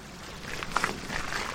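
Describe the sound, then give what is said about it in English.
Water pours steadily into a large tank for juvenile salmon at Carkeek Park, a soft continuous rush with a couple of faint metallic clinks partway through, without any voices. “Water comes down.”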